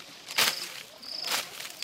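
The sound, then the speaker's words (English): Two brisk, rustling swishes of a leafy branch tapping through plants where grasshoppers hide, to catch them as they jump, in Bolobedu South, Limpopo Province, South Africa, about a second apart, with a thin, steady high-pitched insect buzz in the background. Nobody speaks. “Using a leafy branch to tap the plants that grasshoppers hide in, he then catches them quickly as they jump.”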